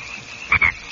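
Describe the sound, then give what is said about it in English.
Two short, raspy frog croaks in quick succession at Lonesome Creek in August, mid-pitched and fairly loud, over a steady, faint chorus of background frogs or insects. “Ribbit. Ribbit.”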